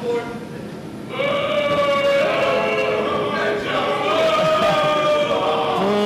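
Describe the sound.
A crowd lets out a loud, sustained boo that swells in about a second in and holds steady, many voices droning together in a low, wavering chorus.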